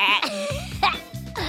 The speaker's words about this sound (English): That's Kapow, my mechanical pygmy goat.